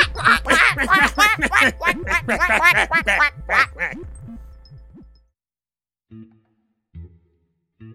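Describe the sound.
A loud, rapid burst of duck quacking runs for about five seconds, the quacks tumbling over one another, then stops, leaving quiet broken by three brief, low, muffled sounds.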